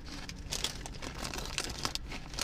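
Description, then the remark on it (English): A chip bag crinkles and crackles continuously, with bright, irregular bursts of rustling and crunchy plastic noise across the whole stretch, fairly quiet with no voices. “These chips.”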